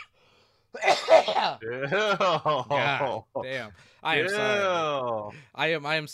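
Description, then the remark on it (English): A short, harsh cough or throat-clearing burst near the start from a person recovering from the flu, followed by a voice making drawn-out vocal sounds with brief pauses between them. “I am still recovering from the flu that I've been trying to hack out and cough out with the past week”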